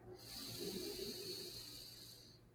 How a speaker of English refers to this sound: So as you breathe in, just sort of a sense of the lungs expanding. As you breathe out, just feeling the muscles in the body soften. So just one more time, breathing in through the nose.